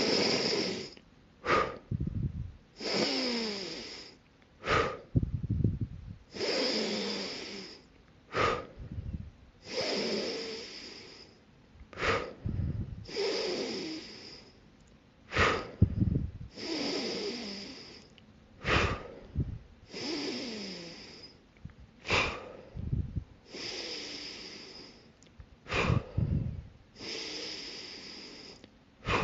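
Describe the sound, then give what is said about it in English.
Deep, forceful breaths drawn in and pushed out in a steady, repeating rhythm during a guided breathing exercise of 30 breaths, each inhale and exhale loud, with no talking. “Now we're going to repeat that series for 30 breaths.”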